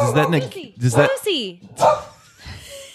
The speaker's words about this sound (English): Oh, sorry, Lucy. Oh, we knocked on wood and we messed with our dog. Jeez. Hey, Lucy.